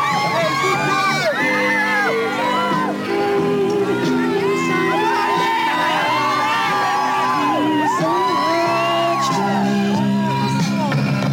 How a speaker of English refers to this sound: Estimated 5,000 fans lined the street outside the theater. When the McCartneys arrived, they went wild.